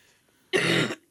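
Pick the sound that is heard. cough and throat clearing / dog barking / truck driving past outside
cough and throat clearing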